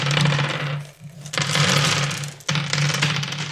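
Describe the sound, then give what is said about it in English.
Dice rattle and clatter inside a cloth bag, shaken close up in three loud bursts with a brief pause between each, and no one speaking. “I put all my dice in a dice bag now, and so I get to do this, and I'm really excited.”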